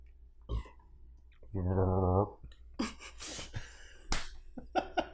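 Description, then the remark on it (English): A loud burp rumbles for under a second right into the microphone, followed by a few short, scattered vocal bursts and mouth noises. “To not burp into the microphone.”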